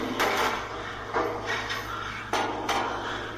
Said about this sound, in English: So Nathan says, crack pipe. It's Morse code.